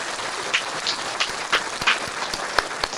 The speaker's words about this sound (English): So do we have that applause button? Do you have that applause button?